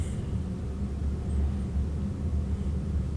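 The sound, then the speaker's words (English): A surveillance drone droning overhead in the post-credit scene of the film Black Adam (2022), a steady low engine rumble that holds constant for a few seconds with no voices, moderately loud. “Oh, surveillance drone.”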